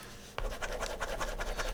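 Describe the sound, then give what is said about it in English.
A pen scratches rapidly back and forth on paper, a steady run of short rasping strokes that starts abruptly and continues fairly loud, with no voices. “Even the pens, like, nah, B, y'all not doing this.”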